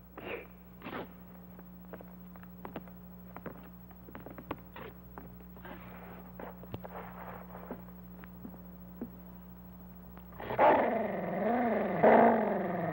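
Scattered clicks and crackles over a low steady hum, then a dog growls loudly, a harsh rumbling snarl that rises and wavers for the last couple of seconds.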